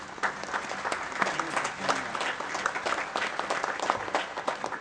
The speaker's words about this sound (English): This weekend, we have had a spectacular consignment sale. And so many thanks go to many people who made that happen. So I think we need to give them a hand of applause here.